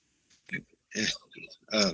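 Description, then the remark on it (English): A few harsh, throaty coughs from a person with a lingering cough: a short hack, then a longer rough burst and a final strong cough, spaced over about two seconds with brief pauses between. “pardon me, I have a lingering cough.”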